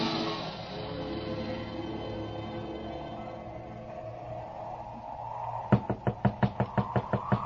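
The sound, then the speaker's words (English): A steady run of about ten sharp knocks on the door of a boarding house, fairly loud, begins near the end after several seconds of sustained, droning orchestral music that continues underneath. “Knock again, George Bailey.”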